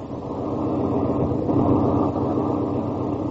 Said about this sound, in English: Tonight's file opens on a lonely mountain road in a northwestern state. The blackness of the night breeds quiet, the only sound for miles around being made by an ancient car wheezing along the highway.